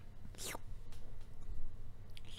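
Wet, hissy slurping noises made right into a microphone: one drawn-out sucking slurp early on, then a few shorter, softer slurps trailing off, over a steady low hum with no talking.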